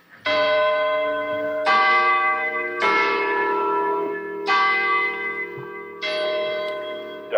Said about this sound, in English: That's very appropriate because that's the town clock at Coolidge Corner, Brookline.